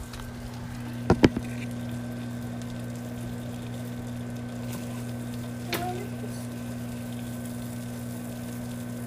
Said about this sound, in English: Ooh, ASMR, are you ready? Listen to the sizzle. Pretty good.